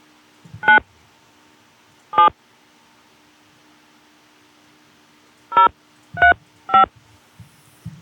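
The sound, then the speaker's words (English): Five telephone keypad tones, short dual-pitched beeps of a zip code being entered into a pest control company's automated phone line, come in an uneven pattern: two spaced apart, then three in quick succession, over a faint steady hum. “Please enter your zip code.”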